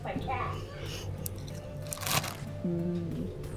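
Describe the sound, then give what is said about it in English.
Crisp crunching of someone biting and chewing a cookie, with a few sharp bites standing out over a low background hum and faint voice sounds. “Can you hear me crunching?”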